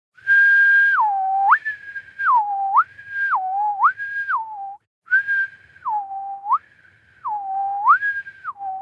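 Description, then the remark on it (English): A person whistles, imitating a test tone, stepping back and forth between a high and a low pitch in a steady repeating pattern. The whistling is clear, with a short pause midway. “I'll whistle the tone while we wait.”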